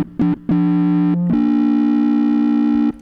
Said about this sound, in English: What kind of tone is that's like a like an error, not an error. What is that? It's like when your TV goes out, like the AV cords were unplugged a little bit. Yeah. This is the cord that plays whenever your TV is just sitting there.